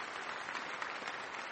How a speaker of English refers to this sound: And I would just like to invite one more round of applause for Robert Rosenkrantz for making these possible.